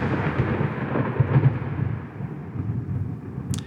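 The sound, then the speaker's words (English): Low, rolling thunder rumbles far off, a sustained deep grumble that swells and fades without sharp cracks, heard alone with no voices over it. “You hear thunder in the distance.”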